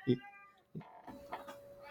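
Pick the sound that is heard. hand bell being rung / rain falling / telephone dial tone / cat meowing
cat meowing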